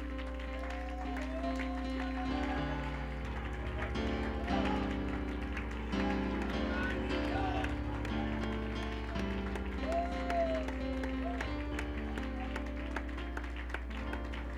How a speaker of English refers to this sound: Oh, clap your hands, all ye people. Let's clap our hands.